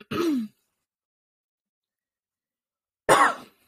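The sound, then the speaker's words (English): Two separate coughs, fairly loud, with about two and a half seconds of silence between them. The first is throatier and the second sharper and breathier. “Sorry again for the coughing.”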